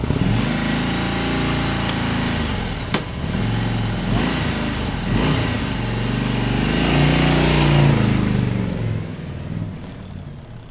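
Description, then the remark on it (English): A motorbike engine runs loud throughout at about 95 decibels, its throaty drone swelling and dipping as the revs rise and fall, with no voices present. “A motorbike, 95 decibels.”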